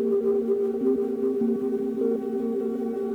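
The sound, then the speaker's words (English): A steady modular synthesizer drone, a self-oscillating Belgrad filter pitched by a Deluge and run through Mutable Instruments Warps into Aurora, hums on without a break, its layered low tones holding level while a few partials shift pitch slightly now and then. No voices are heard. “Very drone-y sounds.”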